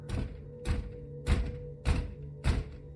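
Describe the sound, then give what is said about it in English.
Five heavy, evenly spaced thuds pound on a front door at around 11 p.m., each a deep booming bang about half a second apart, with no voices. “We'd made it to around 11 p.m. when we heard a loud bang on the front door.”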